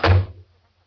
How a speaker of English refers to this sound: Shut the door. I said to shut the door.